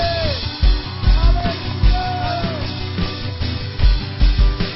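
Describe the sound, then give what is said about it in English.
A church audience gives the Lord a hand clap and a shout of praise, with scattered rising whoops and cries over a dense wash of applause and steady, heavy low thumps throughout. “If you believe God's going to use you to touch heaven and change earth, give the Lord a hand clap and a shout of praise.”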